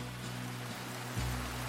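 A steady, dense hiss of rain pouring down, continuous, with a low mechanical hum running beneath it and no voices.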